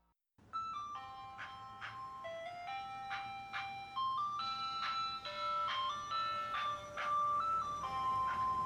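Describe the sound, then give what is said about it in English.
An ice cream truck's tinkly chime melody plays steadily, note by note, growing slightly louder as though the van is drawing closer, with a faint engine rumble underneath and no voices. “With all that said, lock your doors, close your windows, and if you hear an ice cream truck approach, take shelter.”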